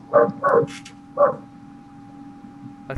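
A cat gives three short, strange, bark-like meows that sound like a dog, two in quick succession and a third after a brief pause, over a faint steady hum.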